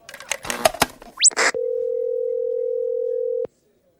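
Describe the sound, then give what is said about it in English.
A quick flurry of clicks and a rising electronic chirp lead into a steady, loud telephone dial tone as a call is patched through to a person's phone, holding one pitch for about two seconds, then cutting off abruptly. “Hey, can you patch me through to her phone?”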